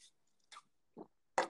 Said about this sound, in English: Baby, yeah, I'm gonna sip some water to that.